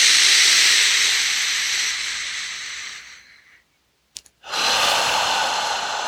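A long, airy breath drawn in during a guided grounding breathing exercise, with a steady hiss that gradually tapers off, followed by a brief silence and a small click before another breath begins.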